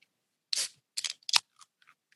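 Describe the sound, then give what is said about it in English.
A 5% dark lager from Burial is popped open: a short, bright hiss of escaping gas, followed by a quick cluster of sharp metallic clicks and a few faint ticks, with no one talking. “So let's pop this thing open.”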